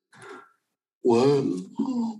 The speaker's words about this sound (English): Why am I yawning? Sorry, excuse me. Gosh, embarrassing.